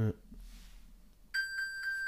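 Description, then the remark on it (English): A phone, made to ring from a button on an Apple Watch, starts ringing partway through, a bright high-pitched electronic tone pulsing in quick repeated bursts, following a brief thump and a quiet stretch. “Rings my phone.”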